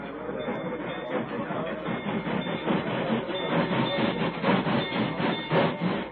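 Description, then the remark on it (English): A train rolls loudly across a railroad bridge, its heavy rumble and rattling wheels holding steady throughout with a faint rhythmic clatter. “Where'll that train stop? As soon as it's across the bridge.”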